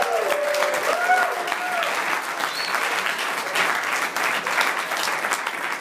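A live audience applauds steadily for several seconds, a dense wash of clapping hands with a few faint cheers rising near the start, fairly loud and close.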